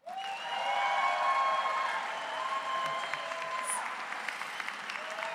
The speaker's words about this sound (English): Please join me in a very big round of applause for the 2023 JD graduates. Congratulations.